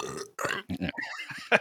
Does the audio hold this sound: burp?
yes